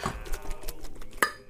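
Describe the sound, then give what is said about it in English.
Metal cans pulled along by a big dog, Emerson, clink and rattle together in a busy, irregular clatter, ending with two sharp, ringing clanks; no one speaks. “What a big, strong doggy pulling all those cans and a cripple.”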